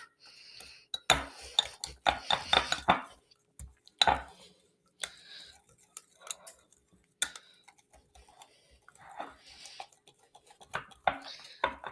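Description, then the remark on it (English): Batter being whisked in a bowl, with quick bursts of metallic clicking and scraping that come in irregular runs separated by short pauses, fairly loud at first, then lighter and more scattered. “I will just whisk this now.”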